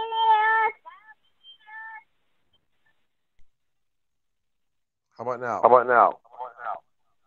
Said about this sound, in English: How about now? There's like a slight echo.